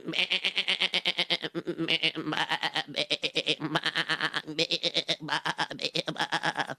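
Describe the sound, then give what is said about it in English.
A person imitates sheep bleating, a long, continuous, wavering baa with a fast vibrato tremble, loud, repeated in several drawn-out bursts over about seven seconds. “Can I do the sheep sound?”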